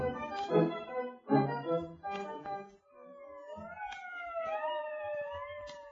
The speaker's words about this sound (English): When the police came and the screaming ambulance, Johnny Becker had been 2 days too shot to even talk.